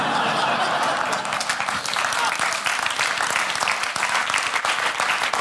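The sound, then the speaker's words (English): Steady audience applause fills the whole stretch, a dense crackle of many hands clapping at an even, fairly loud level, with a few faint voices and laughs mixed in. “I have only 12 minutes, so don't clap and don't laugh.”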